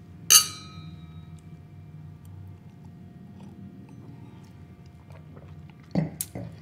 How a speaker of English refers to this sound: So here's a cheers toast to Holy Mother Church.